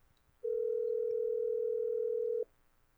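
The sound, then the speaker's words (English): A steady, unbroken telephone dial tone as someone makes a call to their therapist hums at a single mid pitch for about two seconds, then cuts off abruptly, with faint background noise before and after and no voices. “Listen, I need to make a quick call to my therapist, and we can settle this later, the finger snap thing.”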